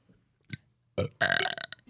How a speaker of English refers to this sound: Can you burp on spot?